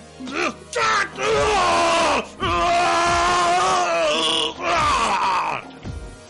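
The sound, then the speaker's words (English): A voice screams in anguish, several long, strained, drawn-out cries separated by brief gasping pauses, loud, rough and wavering like pained wailing; the screaming of a copy of a being known as Cohen, held in a glass prison. “1 microsecond later, the copy of the being known as Cohen began to scream.”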